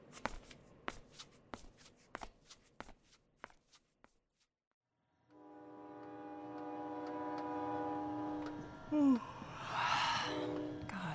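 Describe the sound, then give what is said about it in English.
A quick series of sharp clacks, then a brief pause before a loud, sustained train horn blares for several seconds with a rumbling rail background and a slight pitch waver near the end. “Looks like a couple of trains are doing soon.”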